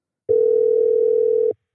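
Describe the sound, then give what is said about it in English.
A telephone dial tone before a call to the author of Friday Night Lights: one steady, loud, low-pitched hum that holds for just over a second and then cuts off, with no voices. “Let's give him a call.”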